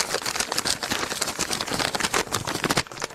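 A piece of paper that floated down onto the desk at Fox Sports Radio is unfolded, giving a steady run of crisp crinkling and crackling rustles for about three seconds, with no voices.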